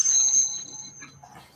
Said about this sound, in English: Let me join with my little Prosecco bell. There you go.